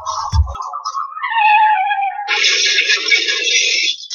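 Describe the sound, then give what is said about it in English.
A car crash sound effect: a brief low thud, then a loud, wavering high-pitched screech that slides in pitch, followed by a harsh, noisy burst that sustains for over a second before stopping abruptly. “And there is the car crash, the sound of a collision, because Christianity and Islam can never worship the same God.”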